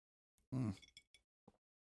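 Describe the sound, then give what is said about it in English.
A heavier knock of a bullet glass (a glass with a bullet set in it as a hand stop) holding Larceny bourbon is followed by three quick, bright clinks with a ringing edge, spaced unevenly over a second or so, with no talking. “Anyway, as you can hear, that's the glass.”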